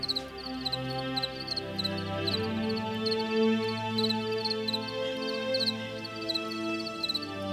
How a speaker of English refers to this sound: If I wake up in the middle of the night, I can like tune into what's happening with the crickets.